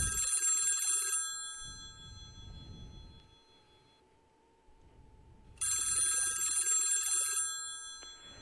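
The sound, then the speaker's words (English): A telephone rings twice on the line as an outgoing call is dialed, each ring a bright, buzzy trill lasting about a second, separated by a long silent pause. No voices are heard. “So I'm going to try and reach him on the phone. Just let me dial him here.”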